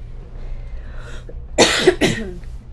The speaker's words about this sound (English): You okay? I just had a coughing attack.